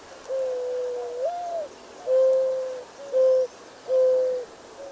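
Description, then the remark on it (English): A mourning dove, a common North American species, gives its signature soft, low cooing call, ringing out clearly on its own: a long first note swelling upward, then three steady, hollow coos at an unhurried pace. “I'll be telling you everything you need to know about the mourning dove. This is a really common species across North America, best known for their signature call.”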